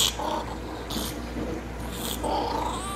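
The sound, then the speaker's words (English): The internet-famous cat Lil Bub makes a run of snuffly, raspy noises: short breathy bursts mixed with low grumbling purr-like sounds, fairly loud and steady over three seconds with no talking. “That's the unmistakable sounds of my favorite internet cat ever, Lil Bub.”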